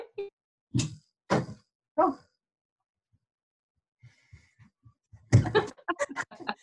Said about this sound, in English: So speaking of kids, mine is knocking on the door. Hold up.